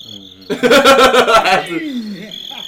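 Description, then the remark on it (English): A short burst of crickets chirping in quick, rhythmic pulses, fairly loud, with a thin steady trill lingering before and after and a voice briefly overlapping. “These crickets are for both of you.”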